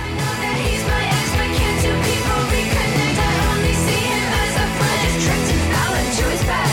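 A loud, dense pop-rock track with a driving beat and a chorus of voices shouting together in an energetic, joyful way, sustained at full volume throughout.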